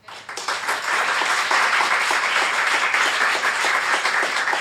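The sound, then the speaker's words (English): An audience bursts into applause for three people who shared their stories at an event, many hands clapping in a dense, steady wash that swells quickly and stays loud throughout. “Can we give them another big round of applause?”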